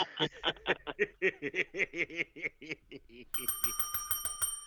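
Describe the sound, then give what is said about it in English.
A series of short, bouncy laughing bursts gives way to a bright bell ringing rapidly and steadily for over a second, clear, like a quick trill; the bell announces game time on the show Another Day Above Ground. “Oh, there's that famous bell that tells us that it's game time here on Another Day Above Ground.”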